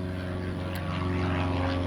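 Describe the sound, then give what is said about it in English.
A Piper Arrow light aircraft flies by over center field just after its landing gear came up, about to turn out, its propeller engine giving a steady, loud, buzzing drone with a strong low harmonic hum throughout, with no voices. “It's a Piper Arrow flyby.”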